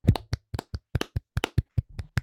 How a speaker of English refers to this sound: Like we do at the end of every episode, let's go ahead and clap that baby out.